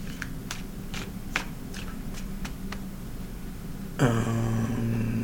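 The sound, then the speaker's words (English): Tarot cards are shuffled, a run of quick, irregular papery snaps and flicks over a low background, then a steady humming tone suddenly takes over near the end. “We're shuffling. I'll shuffle to shuffle.”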